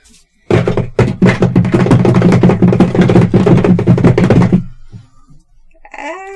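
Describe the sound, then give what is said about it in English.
A rapid, dense flurry of loud tapping, imitating many small legs skittering and approaching, goes on for about four seconds, then stops abruptly, leaving a faint rising whine. “the doors are still open, you have this little skitterer by your side, yeah, and you hear lots of legs coming for you.”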